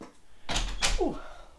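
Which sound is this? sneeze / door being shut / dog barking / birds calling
door being shut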